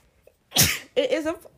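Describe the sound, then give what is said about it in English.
A single loud sneeze bursts out, then a brief voiced exclamation follows right after, with quiet background before it. “You sneezed in my mouth.”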